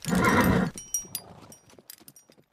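A jet black horse pulling a chariot lets out a loud whinny, followed by a scattering of hoof clops that slow and fade as its rider pulls back on the reins and brings it to a halt.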